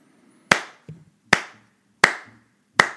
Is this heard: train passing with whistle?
no